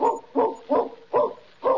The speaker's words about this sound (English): Listen, I hear a dog. Someone's coming.